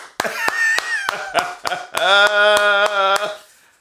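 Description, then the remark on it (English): About a dozen sharp hand claps in a loose, uneven rhythm, ringing out over a drawn-out, tonal voice that rises and then holds a steady sung note. “What's I want to applaud you.”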